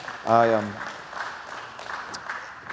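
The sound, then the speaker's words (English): A crowd claps steadily, giving the Lord a hand clap of praise, in a dense, even patter of hand claps, with a brief sustained vocal cry rising over it near the start before the clapping carries on alone. “Yeah, give the Lord a hand clap of praise,”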